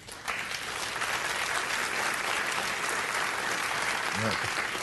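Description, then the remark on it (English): Steady audience applause, a dense wash of many hands clapping at an even loudness for about five seconds, with a brief voice surfacing near the end. “Not quite the applause Apple got.”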